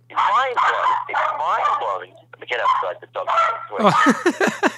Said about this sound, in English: What kind of dog you got there